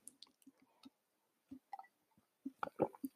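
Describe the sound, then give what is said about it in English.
Quiet wet mouth noises of someone gulping a drink: a few scattered soft squishes and swallows, then a denser cluster of gulps near the end, with no talking. “Sorry, I had to take a gulp or something.”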